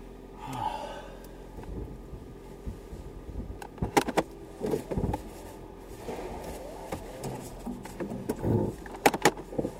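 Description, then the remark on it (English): A car is slowly backed out through a tight spot amid snow, its low engine rumble steady beneath scattered knocks and clunks, with a sharp breathy gasp near the start. “at least we can get the car in and out”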